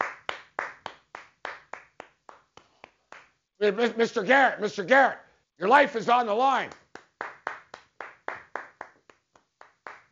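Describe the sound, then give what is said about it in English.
A steady series of sharp hand claps rings out at an even rhythm, pausing while a man speaks briefly, then resuming afterward, fairly loud. “He just clapped.”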